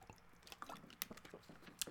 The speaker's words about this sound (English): Let me sip some water.